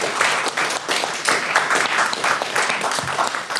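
A crowd claps steadily after a reading of a story, a dense, even patter of many hands, sustained at a fairly loud level for a few seconds with no voices standing out.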